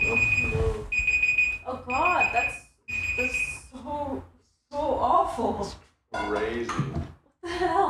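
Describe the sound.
An electronic alarm sounds in repeated shrill, steady beeps through the first half, fairly loud, while people talk over it and keep talking after it stops.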